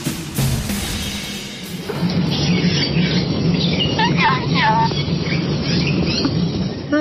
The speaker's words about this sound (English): I hope your morning is just as chirpy as what you're hearing in the background right now.